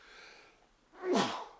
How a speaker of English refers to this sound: sorry, I'm closing my eye because I got to sneeze again.